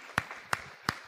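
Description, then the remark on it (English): Sparse applause for children who have just performed on stage: three sharp, evenly spaced hand claps about a third of a second apart, fairly quiet, with no talking in between. “So can we give another round of applause for everyone?”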